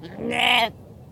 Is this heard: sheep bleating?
yes